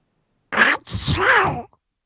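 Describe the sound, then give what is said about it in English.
A voice imitates a cartoon duck sneezing: a short raspy burst, a brief gap, then a longer squawking, nasal blast, loud, with no speech around it. “you never heard my imitation of Donald Duck sneezing”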